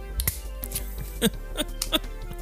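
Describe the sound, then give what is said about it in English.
A drink can is handled and opened: a handful of sharp metallic clicks and snaps at irregular intervals, moderately loud, with no voices. “So I was just noticing on this can that they have a tutorial on the can of how to open the can.”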